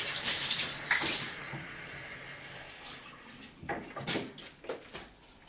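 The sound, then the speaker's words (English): Tap water runs in a steady, hissing stream into a jug for about a second, for mixing with gram flour to thicken a gravy, then after a quiet pause comes a few shorter, splashy bursts of flow, with no talking. “So it's just gram flour and water, which I'm whisking together.”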